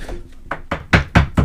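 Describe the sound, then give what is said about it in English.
Knocking on wood, about six firm raps in a steady rhythm that grow louder as they go, sharp, with no talking over them. “I'm like destroying this wood.”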